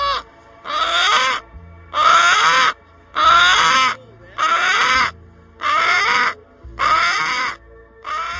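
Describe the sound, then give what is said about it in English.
Chickens of Brahma, Americana and mixed breeds, among hay and feed, cluck at each other in a steady run of seven loud, harsh, drawn-out calls, each lasting under a second with short gaps between, no voices over them. “They cluck at each other.”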